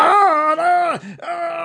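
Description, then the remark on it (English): A voice imitates a hobgoblin's yell: a loud, strained, wavering cry that sags and breaks briefly near the middle, then picks up again and holds to the end. “And the hobgoblin sees all of you now facing in that direction when he peers around and just sort of lets out a bit of a yell.”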